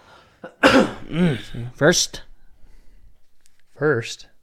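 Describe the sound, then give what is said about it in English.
A loud cough comes in a few harsh voiced bursts, a longer fit followed by a short one and, after a quiet pause, a final cough. “First cough.”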